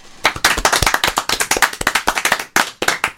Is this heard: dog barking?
no